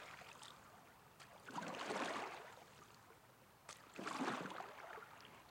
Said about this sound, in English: And then she picked up the oars, pushed off the shore, and began to row.